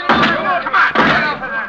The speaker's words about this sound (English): Smash the door down! Into it now!